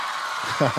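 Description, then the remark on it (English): A steady wash of crowd cheering at the Teen Choice Awards fills the short moment, with a voiced whoop or shout rising out of the noise near the end. “What a great crowd. Give it up yourselves.”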